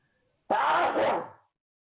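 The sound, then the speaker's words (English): A single sneeze bursts out abruptly, a loud breathy blast that holds for about a second before trailing off into silence. No one speaks. “God bless you.”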